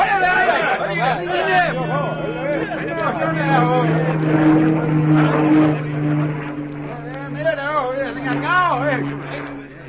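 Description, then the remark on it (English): A steady, droning engine hum holds throughout as an airplane flies overhead, while several voices murmur and talk over it. “It must have been the plane. They stopped to look at it as it went over and changed their direction when they moved off again.”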